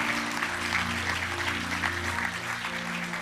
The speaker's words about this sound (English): Give these students a big hand clap. Now give our teachers and all our faculty up here a big hand clap.